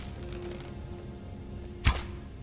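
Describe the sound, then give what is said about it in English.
A single sharp bow shot in a video game, a quick snap and whoosh with a low thud, rising loud over a steady, quiet ambient hum, as the player fires an arrow at a Falmer enemy in a room full of ruins. “I'm going to get out my bow and take the high road.”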